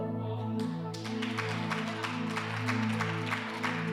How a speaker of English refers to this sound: I love that you're clapping at that, but I just literally told you I'm out of a job in a few years.